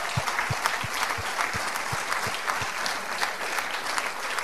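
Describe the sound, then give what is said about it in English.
An audience at an evening event for the charity Erskine breaks into a sustained round of applause, dense overlapping claps forming a steady, fairly loud crackling wash with no voices standing out. “And I think that just deserves a massive round of applause when you see stories like Bill there.”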